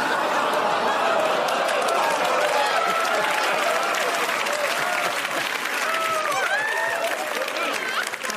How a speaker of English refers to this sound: Ooing into applause. You don't hear that a lot, but we do it here.